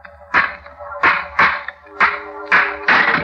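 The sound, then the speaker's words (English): Six hard metallic strikes land in an uneven rhythm, each a sharp clanging bang with a brief ringing tail, loud, as a stone smashes an old rusty lock on a tomb door. “Smashed the lock.”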